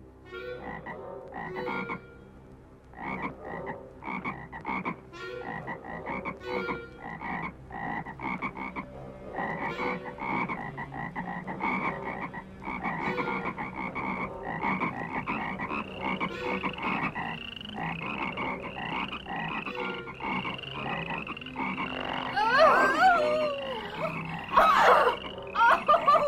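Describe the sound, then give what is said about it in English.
A dense chorus of frogs croaks continuously, depicting the biblical plague of frogs covering the land of Egypt, countless overlapping rhythmic calls filling the air, growing busier and louder toward the end with some sharper chirps mixed in. “And at the word of Jehovah, Aaron stretched his hand out over the waters of Egypt, and the frogs began to come up and to cover the land of Egypt.”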